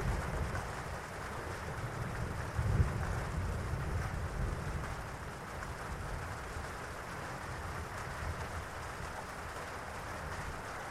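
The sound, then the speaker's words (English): Steady rain falls continuously, a dense, even hiss with a low rumbling undertone and no distinct drops standing out. There is no talking, and the sound stays constant throughout. “Each and every raindrop just allows you to relax even further.”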